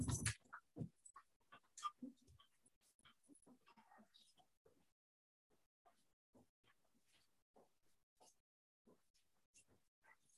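A dog pants in quick, irregular huffs, with a few soft whimpers mixed in, after a loud scuffling burst at the start; the breathing gets quieter toward the end.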